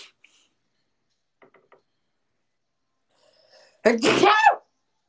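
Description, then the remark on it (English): A single loud sneeze bursts out near the end after a short sharp intake of breath, preceded by a few faint soft clicks in otherwise near silence. “Thank you for blessing me, guys.”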